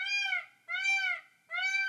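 A peacock hanging out in the yard calls three times in steady succession, each cry a loud, nasal, wailing note about half a second long, slightly rising then falling in pitch, with short gaps between and no voices.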